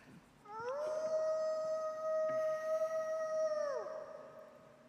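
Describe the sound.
A person imitates a wolf howl: one long, steady, fairly loud note that slides up at the start, holds for about three seconds, then drops away at the end, with no talking.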